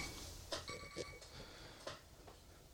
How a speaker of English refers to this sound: What the fuck is that? Timer? I don't... For what? Which one's going off?